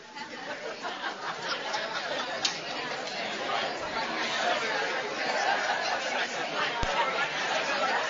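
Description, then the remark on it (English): An audience chatting among themselves, turning to one another to talk about which one they liked best, a steady overlapping babble of many voices with occasional chuckles, no single voice standing out, holding at an even level throughout. “I need you to talk. I'm going to give you maybe 4 or 5 minutes.”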